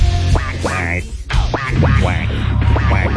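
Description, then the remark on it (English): A person imitates a duck with a rapid series of nasal, buzzy quacks, repeated in quick bursts over a few seconds, fairly loud. “I was doing quack, quack all Thanksgiving.”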